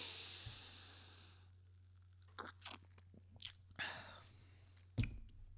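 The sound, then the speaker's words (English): Crisp crunching of a glitter-topped treat being bitten and chewed, about five irregular crunches after a soft hiss fades, with quiet pauses between bites and no talking. “That glitter. It adds a little bit of a crunch.”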